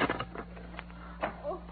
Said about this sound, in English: Uh-oh, somebody's unlocking the door.